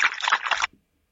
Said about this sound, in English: Dog drinking. Ooh. Congrats. What? Dog drinking was the correct answer.